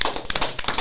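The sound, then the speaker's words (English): A short burst of applause for a guest at WBSU radio, Bowie State University, a crowd's quick, irregular hand claps overlapping into a bright crackling patter at steady loudness, with no voices. “Everybody give it up for”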